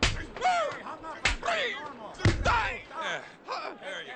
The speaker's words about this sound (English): Gee, I fixed your mouth by slapping you.